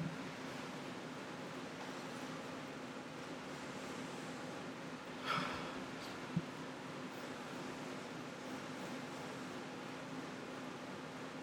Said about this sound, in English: Oh, wait, no, I forgot the smell. I already want to try it and everything, so smell now. Let's give this bad boy a sniff.